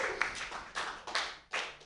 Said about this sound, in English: Hello, greetings. How are you? Let's just get a round of applause going. Woo!